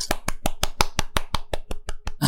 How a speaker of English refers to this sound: Yes, muted applause. I need more rehearsal time. He's bowing. Very good.